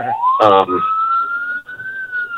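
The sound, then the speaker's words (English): A fire truck siren wails loudly, its tone sweeping upward and then holding a steady high pitch, as the fire truck comes up behind a car being driven home in New Hampshire. A short burst of voice cuts in near the start. “By the way, I got a fire truck coming up behind me, so you might hear some noise.”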